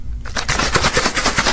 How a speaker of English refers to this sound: In fact, start to hear me shaking that water bottle. Right by your right ear.